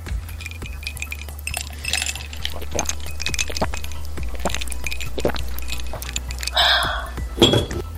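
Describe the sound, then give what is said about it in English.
A mug is reached for and handled, with scattered light clinks and knocks of ceramic, a brief rustling scrape near the end, all over a steady low hum. No one speaks. “I can't reach my mug. For the mug.”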